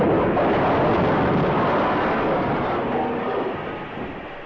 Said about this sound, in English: Suddenly, the tremendous blast of an explosion. The entire bridge topples and falls, plunging the train to total destruction in the valley below.